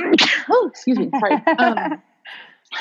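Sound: sneeze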